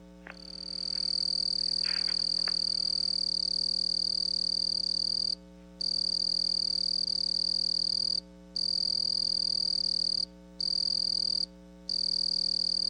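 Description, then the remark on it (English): A southeastern field cricket (Gryllus rubens) trills loudly in a steady, high-pitched buzz, broken only by a few brief pauses near the end, with no voices. “Southeastern field cricket, Gryllus rubens.”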